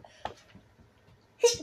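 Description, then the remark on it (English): A single loud sneeze bursts out at the very end, sharp and breathy, following a stretch of quiet with a few faint, soft vocal sounds. “Bless you.”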